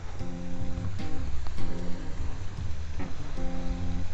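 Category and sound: nature, waterfall splashing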